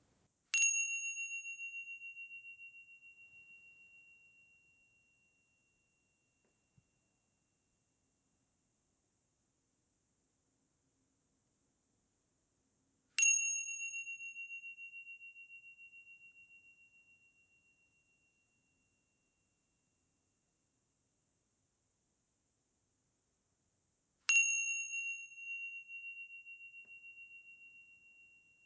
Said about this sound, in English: So I think I'll invite the bell. Wonderful way to find our way to silence is with noise, but it can help center and bring us to here and now. So just let yourself hear the bell and notice when the sound has disappeared.